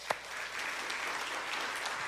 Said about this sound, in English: So today we are going to be grappling with the fact that God doesn't give us more than we can handle. A clap if you've ever heard that.